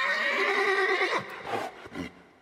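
horse neighing

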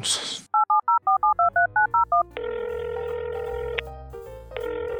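telephone keypad dialing tones

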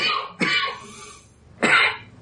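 coughing

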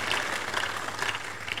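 audience clapping applause

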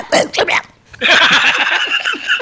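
dog barking

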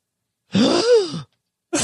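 imitated gasp

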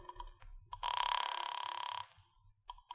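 telephone ringing

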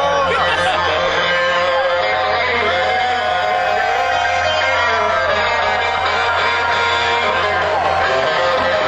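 concert crowd cheering wildly

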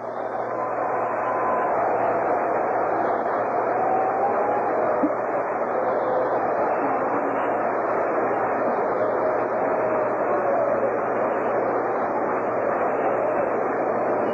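stadium crowd applause

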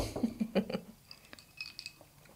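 glasses clinking

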